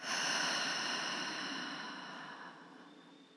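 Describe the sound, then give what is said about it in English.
A long, airy deep breath pushed out through the mouth, soft, steadily fading over about three seconds with no talking. “One final deep inhale, inhaling all that fresh new life energy. And exhaling all that old stagnant energy.”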